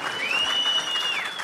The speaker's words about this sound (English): A round of applause for ….